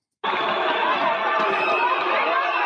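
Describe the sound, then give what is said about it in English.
A loud, dense crowd roars and shouts continuously, a wall of many voices with no pauses, starting abruptly and holding steady throughout, at a street demonstration in Spain where police are out using sticks on people. “They have the policia out there, and they've got your Muslim be good sticks, and they're putting them to use, ladies and gentlemen.”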